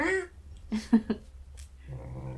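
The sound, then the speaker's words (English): A cat gives a short meow, followed by a few brief chirpy sounds, with quiet background noise filling the rest of the moment. “I'm getting distracted by the cat.”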